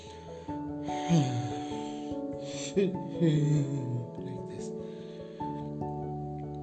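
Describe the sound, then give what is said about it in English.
A voice imitates a few heavy breaths close to the ear, like someone breathing at the side of one's ear, drawn in and out in slow, uneven bursts over a steady, droning musical background. “There was a breath, and that particular, I was getting a feeling that someone is breathing in the side of my ear, like this.”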